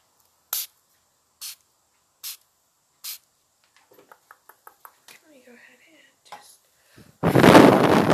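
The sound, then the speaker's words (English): Four short misting sprays of rose water from a pump bottle onto a person's face, evenly spaced, followed by soft clicks and faint rustling, then a longer, louder burst of spray at the end. “I'm gonna go ahead and spray it on your face.”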